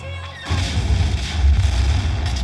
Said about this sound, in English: Huge explosions.